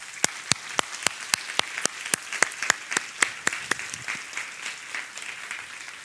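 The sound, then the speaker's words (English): An audience at a presentation applauds, starting with sharp, evenly spaced claps in a steady rhythm that soon loosen into a softer, scattered patter of many hands. No voices are heard. “But what I want you to do is give yourselves a huge round of applause for being an amazing audience.”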